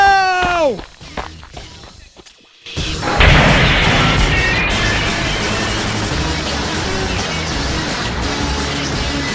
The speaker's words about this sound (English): As Jesse looked on in horror, there was no escape for brave Bob Lard, as the crashing torrents of mushy peas and vinegar hurtled down the state road, sweeping him away and straight to the monster killer pie.